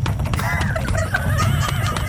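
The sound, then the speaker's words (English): A ridden horse's hooves pound in a fast, steady gallop with heavy low rumbling, while a high, wavering whinny rises briefly over the loud hoofbeats. “I'm slick on this horse, and I'm going to grab your head up from the back.”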